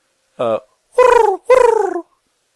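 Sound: voice imitating a pigeon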